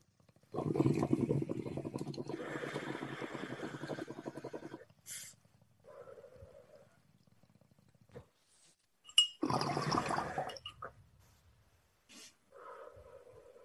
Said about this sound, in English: I got my bong packed. I'm ready. Are you ready? I am so ready for this hit right now. I need it really bad. Ready? Yeah. All right, light up, guys.